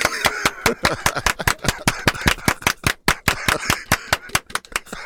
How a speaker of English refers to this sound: They said, don't run, don't turn your back, clap your hands, stomp your feet. Yeah. And taunt the coyote. Do they want like this? Clap your hands and stomp your feet.